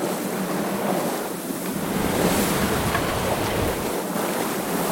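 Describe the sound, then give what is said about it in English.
Steady rush of sea waves and gusting wind aboard an Ocean Star 56.1 sailing yacht crossing the Atlantic Ocean in the Atlantic Rally for Cruisers, a continuous broad roar with gentle surges, fairly loud, with no voices. “we're aboard the Athena 2, making our way across the Atlantic Ocean on the ARK, the Atlantic Rally for Cruisers.”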